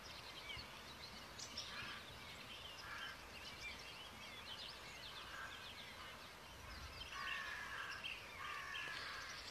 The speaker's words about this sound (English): While the men dream, the owls cry.